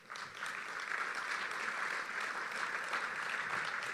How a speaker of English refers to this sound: I don't know about y'all, but I think this has been one of the best summits that we've had. With Tommy Nelson's book and a host of really great speakers. So hand a round of applause for our speakers.